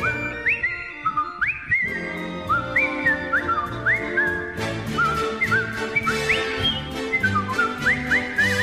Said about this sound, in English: Try skipping down the street whistling and just waving at people. Huh? Come on, you know what I mean. Just skipping down the street, whistling.